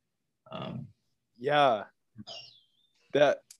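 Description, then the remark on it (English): Birds chirping outdoors in Panama in a few short, bright bursts with pauses between them, clear, with one thin whistled call rising above the rest. “Like I can hear the birds wherever you are, you know, it sounds beautiful.”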